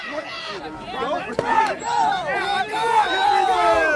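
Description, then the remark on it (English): A football crowd cheers and roars steadily for several seconds after a player is stopped short of a first down and Winfield Mount Union gets the ball back at midfield, a dense mass of overlapping shouting voices that stays loud throughout, with one brief sharp crack partway through. “Well, as you can hear, the crowd approves.”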